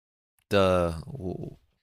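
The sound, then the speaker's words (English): A single voice belts a short, wailing sustained note that slides into a lower, wavering tail, mimicking dramatic choral film-score singing, about a second long with no other sounds. “That gets the singing.”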